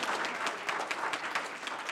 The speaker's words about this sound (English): Okay, take your time. Please applaud these courageous survivors!